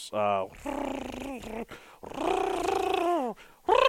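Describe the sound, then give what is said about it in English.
A person voices an imitation of a pterosaur's growling call: three or four throaty, drawn-out growls that rise and fall, fairly loud, separated by brief pauses. “I think that's the noise it would make. That's more like a dog.”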